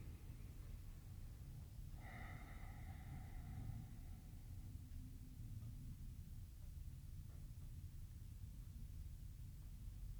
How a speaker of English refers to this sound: As you breathe out with a soft and relaxed exhale, you ground and root down. I'm breathing both in and out through the nostrils here.